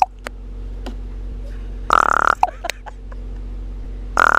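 Two harsh, raspy raven calls, one in the middle and one cut off at the end, each a throaty croak over a low steady hum, with a few faint clicks between.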